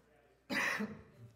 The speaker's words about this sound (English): I have a perpetual cough since the third grade.